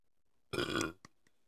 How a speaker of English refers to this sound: Oh, she just burped, Mary.